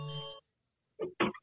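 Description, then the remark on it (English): A phone ringtone: a short, buzzy electronic tone rich in overtones, then a pause and two quick, brighter bursts of sound, all fairly quiet and with no talking. “Before Christmas, my ringtone is.”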